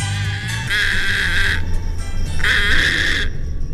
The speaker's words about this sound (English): Thank you, that's plenty. Today's Talkin' Birds featured feathered friend, the little blue heron.